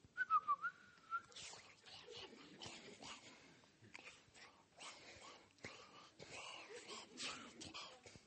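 A person whistles a short, wavering tune for about a second, then the whistle gives way to soft breathy, rustling noises that continue quietly to the end.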